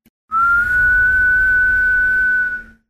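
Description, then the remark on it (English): A single sustained whistle tone, slowly rising in pitch like something flying upward, lasts about two seconds over a low rumbling background before fading out. “Like a whistle, and we just see it going up into the night sky, twirling around, and then coming back down.”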